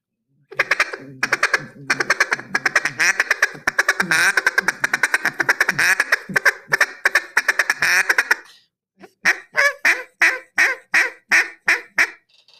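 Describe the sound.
A duck call blown loud and very loose in a fast, whiny rolling feed chuckle for several seconds, then a short pause and a string of about eight slower, evenly spaced quacks.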